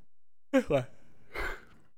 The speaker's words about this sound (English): So this yawn right here.